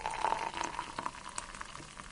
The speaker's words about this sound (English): The kettle's boiled now, so let's pour my tea.